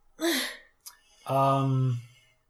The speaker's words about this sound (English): Gesundheit. Thank you.